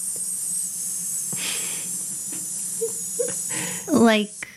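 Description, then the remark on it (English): A steady, high-pitched hiss of gas escaping from vents runs unbroken throughout, with a few soft clicks and knocks beneath it and a brief rising squeak near the end. “Air hissing, potentially gas being released.”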